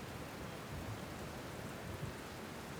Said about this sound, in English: Maybe wait out the rain.